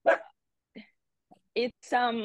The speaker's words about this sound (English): Sorry, you can never predict the dogs. Sorry about that.